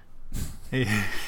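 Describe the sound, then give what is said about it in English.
A person imitates a single snore with their voice: a rough, snorting inhale followed by a drawn-out voiced exhale, fairly loud, with nothing else around it. “he's snoring while meditating.”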